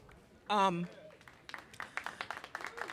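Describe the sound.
An audience breaks into scattered, building applause, many quick sharp claps overlapping unevenly, preceded by a single loud voiced whoop from the crowd.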